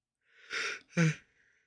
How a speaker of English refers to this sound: Sorry, had a bit of a yawn there.